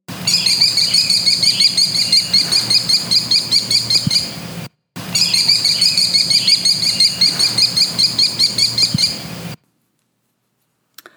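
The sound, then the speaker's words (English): American kestrel, North America's smallest falcon, calls: loud, shrill notes repeated rapidly in two long runs separated by a brief pause, with no voices, then silence at the end. “North America's littlest falcon, the American Kestrel, packs a predator's fierce intensity into its small body.”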